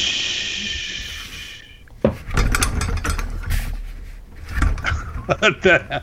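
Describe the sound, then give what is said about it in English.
A globe being spun, giving off a dry, scraping rub with loose rattling that swells and fades in uneven bursts, ending in a few quick knocking pulses after a brief high hiss. “There's no way he's sending globes out that sound like this.”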